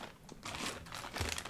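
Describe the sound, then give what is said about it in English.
Crisp, crackly crunching of jerk-style plantain chips being chewed during a taste test, a few irregular bursts over about a second and a half, fairly quiet, with no talking. “Okay, we're gonna try the jerk plantain chips.”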